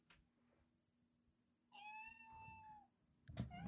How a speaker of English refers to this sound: Alexa, what does a cat sound like?